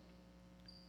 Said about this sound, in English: Is there a hum in these? Do you hear that? Can you guys knock that hum out?